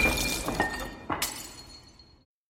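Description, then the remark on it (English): A glass is knocked across a room and smashes loudly, with a bright burst of shattering followed by a second sharp crash and scattered tinkling shards that fade out over about two seconds. No voices. “he does, you know, what his father would have done, which is knock the glass across the room, mm-hmm.”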